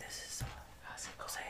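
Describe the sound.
Soft, breathy whispering in the hushed ASMR manner: quiet, airy bursts with hissing sibilants and a brief low thump partway through, with no voiced speech.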